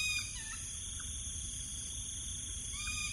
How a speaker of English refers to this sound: To be fair, it's coming up for midnight, and while I do hear the occasional truck in the distance at the cemeteries at Choa Chu Kang, it's just cicadas and the occasional noisy bird.